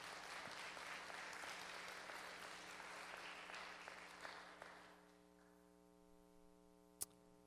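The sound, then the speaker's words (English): A crowd of people claps together in steady, dense applause for about five seconds as a hand clap of praise for Jesus, then it fades out, leaving a quiet hum and one sharp click near the end. “Come on, give Jesus a hand clap of praise.”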